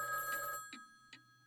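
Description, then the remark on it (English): A telephone rings with a steady electronic trill, then cuts off, leaving two short clicks or taps afterward; moderate loudness, no voices. “I'm probably just hungover and sleep-deprived, and I can't remember a phone being there.”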